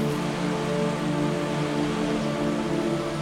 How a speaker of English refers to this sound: As the waves wash against the jetty again and again, remember how our negative emotions can wash away bit by bit when we think clearly and when we let ourselves be refreshed like the waves refresh the shore continuously throughout the day.